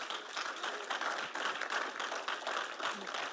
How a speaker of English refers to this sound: How about we give God a clap? Come on.